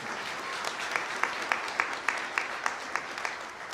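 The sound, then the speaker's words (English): An audience applauds the musicians after their performance, a dense wash of clapping with a steady rhythmic beat of sharper claps running through it, holding at moderate loudness and easing off slightly at the end. “Let's give our musicians a hand.”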